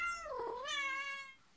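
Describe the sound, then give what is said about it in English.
A man imitates a cat with one drawn-out meow that dips low, then rises and holds before trailing off. It is fairly loud, with no talking around it. “In case anybody was confused about what a cat sounds like, the guys are on it.”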